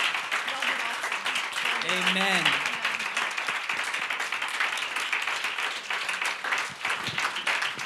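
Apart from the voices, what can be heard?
audience hand clapping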